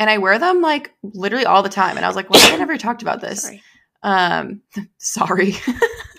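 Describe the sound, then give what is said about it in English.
A single sharp sneeze bursts out, cutting briefly into a woman's steady talking, which carries on before and after it. “Bless you.”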